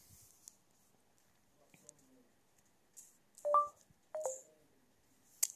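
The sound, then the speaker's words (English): A few soft taps on a phone screen as someone presses stop to end a recording, then two short electronic keypad tones a moment apart, fairly clear against near silence. “I'm clicking on stop, but I don't know why.”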